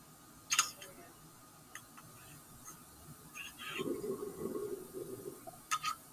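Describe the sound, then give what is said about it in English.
A sharp click, a quiet stretch, then about a second and a half of low, burbling water bubbles as a glass bong is drawn on, followed by another bright click. “I haven't moved at all, so I'm going to record the bong uptake, and then I'll move in closer and see how that sounds.”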